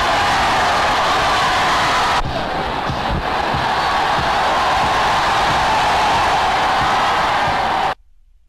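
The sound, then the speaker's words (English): A large crowd of political supporters cheers and roars in a dense, steady wall of noise for about eight seconds, staying loud throughout before cutting off abruptly. “Here's the crowd that was cheering.”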